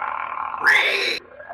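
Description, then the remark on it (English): A voice imitates a pig squeal: a buzzy, nasal tone jumps into a loud, shrill, rising squeal for about half a second, then drops back to a lower strained drone. “That's a pig squeal.”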